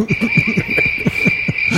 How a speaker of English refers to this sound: Crickets.